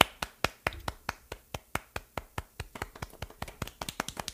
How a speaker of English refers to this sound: I'm gonna give out a B for effort for just having the condom present. We have to give a round of applause for that. At least he had a condom.